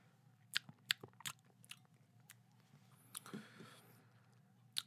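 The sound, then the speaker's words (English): A few sharp clicks and taps, then a soft, wet slurp as someone takes a small sip of a citrusy light beer, faint, with no talking. “So let me take a little sip-a-roo here.”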